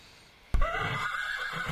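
A horse whinnies once, loud, its shrill, wavering neigh bursting in suddenly after a brief quiet moment and trailing off with a rough, breathy tail.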